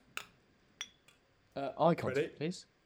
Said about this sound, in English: So we're going to put our beers together.